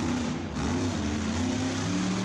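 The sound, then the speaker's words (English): A loud, throaty monster truck engine rumbles and revs steadily, its deep low growl filling the short stretch with a sustained roar and slight pitch shifts. “The monster trucks are coming.”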